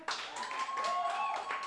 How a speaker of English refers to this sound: Go ahead and clap again.